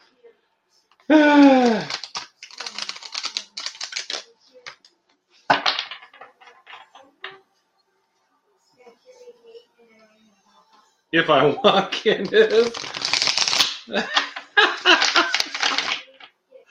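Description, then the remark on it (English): A deck of cards being shuffled: a few crisp, rattling riffle bursts, with a longer run of shuffling near the end, plus a brief laugh and a few quiet spoken words. “Were you listening to me shuffle, friend?”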